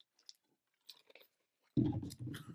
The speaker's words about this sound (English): I'm chewing. Oh, I want to start chewing.